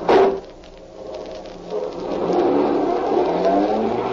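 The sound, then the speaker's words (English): A sharp burst at the start, then a car engine revs up and roars steadily as the vehicle pulls away, loud and building in intensity with no talking. “Get this car moving.”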